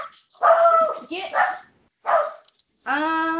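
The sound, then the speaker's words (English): A dog barks and yips several times in quick, uneven bursts, fairly loud, ending in a longer high-pitched whining bark. “The dog agrees.”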